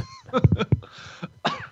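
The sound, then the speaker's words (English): A short run of fairly loud coughs, three or four quick bursts in a row, followed by a raspy throat-clearing breath and one more cough at the end. “might have also picked up what we like to call a little bit of a cough between the end of the trip and now.”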